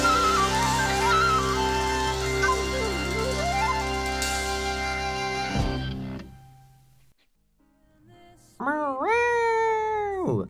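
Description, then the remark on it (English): A dense, sustained musical passage fades into a short silence, then a cat lets out one loud, drawn-out meow that rises and falls in pitch. “Are you a cat? Are you a mature cat looking for a home?”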